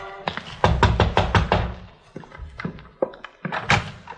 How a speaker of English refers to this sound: It was a single-family frame house, rather the worse for wear. A light showed in the rear window, so I walked around back and knocked on the door.